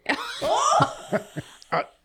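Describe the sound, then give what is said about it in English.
A person coughs several times in short, sharp bursts, with a voiced, laugh-like sound blending into the first coughs. “I was coughing.”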